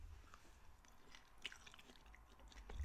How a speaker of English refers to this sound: I'd probably do this. It's so quiet if it's just eating. ASMR.